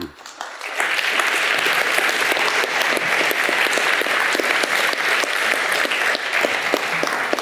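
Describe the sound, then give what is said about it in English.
A crowd at a debate on sanctions breaks into another round of applause for four speakers' cases, a dense, steady wash of many hands clapping that swells quickly after a brief quiet start and holds loud for several seconds. “In fact, I'd like to ask for another round of applause for the collective effort.”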